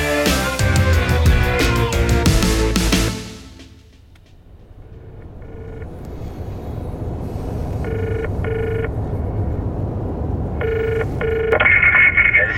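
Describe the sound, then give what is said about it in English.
A loud burst of music cuts out, then a car phone in a car turning off Bridge Road beeps out short keypad tones in separate bursts over a low engine hum, followed by a steady ringing tone at the end. “Have you finally got a mobile? No, it's the car phone.”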